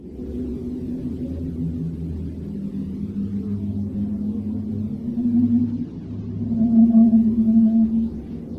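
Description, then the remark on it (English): Eerie, continuous low drone of a NASA-released recording of Uranus plasma waves: wavering, moaning tones layered over a deep rumble, swelling louder toward the end, with no voices. “Solar events usually are the catalyst for these plasma waves, but NASA has also released the sounds of planets. That's right, planets make noise, and these waves are creepy as hell. Here is Uranus.”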